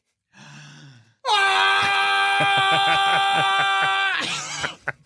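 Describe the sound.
A voice lets out a long, loud, sustained barbarian scream, used as a barbarian method of dispelling darkness. It is a rich harmonic bellow held for about three seconds after a short low vocal lead-in, then breaks off with a ragged gasp.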